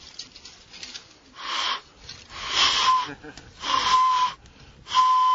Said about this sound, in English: And if you break this just right, has to be quite even, you can make a whistle out of it.